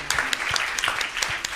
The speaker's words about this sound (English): Let's give them another round of applause.